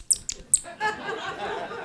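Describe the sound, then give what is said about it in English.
An angry rat squeaks: three shrill, piercing squeaks in quick succession, then a harsh, raspy chattering hiss that carries on. Fairly loud, with no talking. “This is the sound of an angry rat.”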